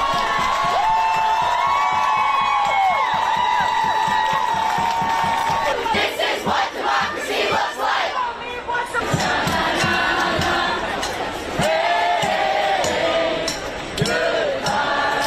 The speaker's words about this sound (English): Protesters outside the court's doors voiced their pleasure and their pain.